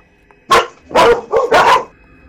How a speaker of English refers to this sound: Those snakes sound like dogs.